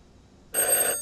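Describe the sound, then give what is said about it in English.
A single electronic telephone ring bursts in after a quiet half-second, a bright, buzzy trill of stacked high tones that holds steady for about half a second before cutting off. “Another ring of synthesized hammers hit virtual bells.”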